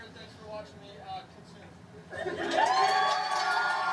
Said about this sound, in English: Yeah. They're clapping. They're literally like so. They were fucking hyped. They're just so proud of him.